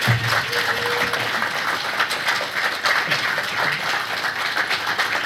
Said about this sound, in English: Thank you very much, gentlemen. Round of applause for the guys.